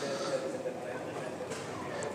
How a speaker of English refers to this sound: Sounds like there's a train arriving now.